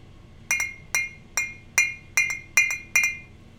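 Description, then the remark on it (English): Glasses clink together in a toast, seven or so bright, ringing taps in a fairly steady rhythm, some doubled, each with a short shimmering decay over a faint low background hum. “So, ladies, it's time to get your glasses out. Juice, what we got for the cheers?”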